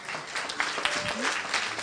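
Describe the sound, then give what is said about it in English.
A church audience breaks into steady applause, many hands clapping together in a dense, continuous patter, with faint voices mixed underneath. “Just to give them a hand clap, church.”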